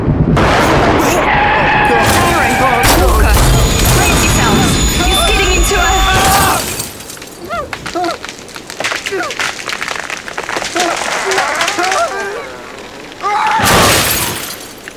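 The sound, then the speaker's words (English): During a storm, a tree comes down onto a van, taking out its side and front, with a loud, sustained crash of splintering wood, crunching metal and shattering glass for several seconds, then quieter rattling and debris before a final short burst of noise. “that tree fell right on the... it's taken out the whole side and it...”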